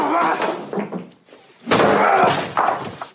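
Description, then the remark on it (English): Nicolas Cage smashes a pool table apart in a film scene: loud, harsh crashing blows and splintering thuds in two main bursts, with a raised voice mixed into the chaos. “Here's Nicolas Cage smashing up a pool table.”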